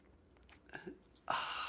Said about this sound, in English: I got some coffee right here. And join me now for the unparalleled pleasure, the dopamine hit of the day, the thing that makes everything except shark attacks better. It's called the simultaneous sip, and watch it happen right now. Go.